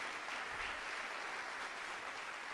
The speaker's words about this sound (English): Come on, clap your hands a little bit, will you?